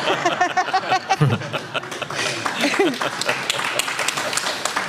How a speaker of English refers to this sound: Oh, the applause.